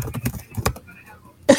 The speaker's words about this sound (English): She's typing furiously. I know. That's some furious typing going on